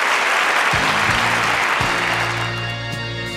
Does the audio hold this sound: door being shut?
no